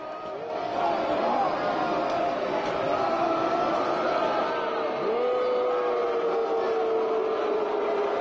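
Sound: crowd booing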